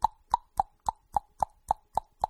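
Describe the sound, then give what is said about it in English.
A person mimics with their mouth the clicking their car makes on start-up, from a broken gear peg on a motor in the HVAC system: nine quick, evenly spaced pops in a steady rhythm, mid-pitched and fairly loud, with nothing else in between. “So now when I start up the car, I just hear a clicking, like...”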